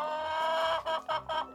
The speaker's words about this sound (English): And let's just say that one particularly cantankerous chicken starts squawking. What the heck's wrong with that creature?